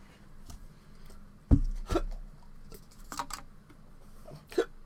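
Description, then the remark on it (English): Several sharp, abrupt hiccups, about four, spaced irregularly over a few seconds against a quiet background with a low hum. No one talks between them. “Oh no, I have the hiccups.”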